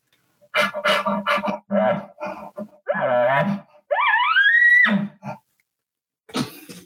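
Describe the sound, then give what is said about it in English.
A man's voice imitates an agitated elk: a run of breathy huffs and deep growling grunts, then a rising, wavering nasal whine, loud, followed by a final short huff. The huffs, grunts and whines are given attitude, with a heavier growl and more air pressure from the diaphragm on the whine. “But now I'm going to do those same huffs, grunts, and whines, but now I'm going to add a little bit of attitude to it.”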